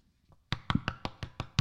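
A quick run of seven firm, evenly spaced police-style knocks on a door, loud, hammered out in a rapid insistent rhythm, with no voices.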